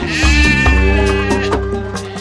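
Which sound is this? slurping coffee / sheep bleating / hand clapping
sheep bleating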